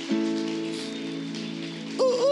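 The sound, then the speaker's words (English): A church audience claps for God steadily, a dense wash of applause over a sustained musical chord, with a sliding voice or cheer rising near the end. “And everyone says, come on, give God a hand clap one more time.”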